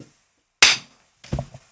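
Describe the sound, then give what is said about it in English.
A single sharp, bright hand clap rings out after a moment of silence, followed shortly by a softer, duller knock or shuffle. “So now if I clap and do it.”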